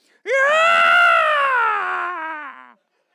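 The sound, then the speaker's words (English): A person's voice lets out a loud, sustained monster-like roar-scream lasting over two seconds, strained and harmonic, slowly sliding downward in pitch before cutting off. “It's coming out like Godzilla.”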